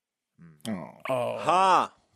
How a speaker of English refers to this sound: That was a big yawn there,